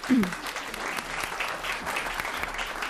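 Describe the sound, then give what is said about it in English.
An audience applauds steadily after a poetry reading, a dense, even patter of many hands clapping with no pauses, and a brief low vocal sound rises at the very start. “Oh, you may clap your hands, it doesn't bother me.”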